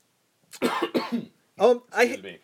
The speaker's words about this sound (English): as you cough